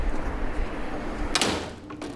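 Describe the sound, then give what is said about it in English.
A front door on Baker Street opens with a sharp, bright scrape partway through, then a softer knock, all over a steady low rumble of traffic noise from the loud street outside. “Open the door.”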